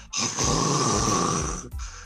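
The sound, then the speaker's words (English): A voice imitates a woman snoring while asleep during a movie, with one long, loud, rasping snore drawn out for over a second, followed by a brief pause and the start of another. “now she's like, yo, I'm sleeping in the middle of Matrix Revolutions. Snoring.”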